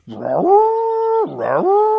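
A voice imitates a creature's triumphant roar: two long, loud, howling bellows, each rising gruffly and then holding a steady tone, with a brief break between them.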